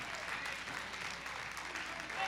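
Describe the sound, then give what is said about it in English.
An audience in a church service bursts into steady, dense hand clapping of praise to God that runs unbroken for a couple of seconds, a bright wash of many hands with indistinct voices blended underneath. “I wish you'd give him a great hand clap of praise right now in this house.”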